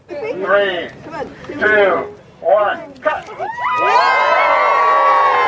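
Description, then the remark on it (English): A crowd of voices, including children, shouts and calls out in bursts, then breaks into sustained loud cheering and whooping that carries through to the end, at the unveiling ceremony of the Carina LeBlanc Field at Merkley Park in Maple Ridge. “Yeah, lots of cheers.”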